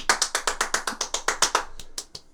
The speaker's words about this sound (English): Get some for the audience, would you? There you go. Get the applause. You're going to have to work on clapping faster so it sounds like there's more of you.